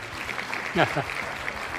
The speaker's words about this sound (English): I'm very good. I like the applause. Thank you for the applause.